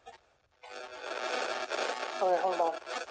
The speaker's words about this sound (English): You're getting some interference.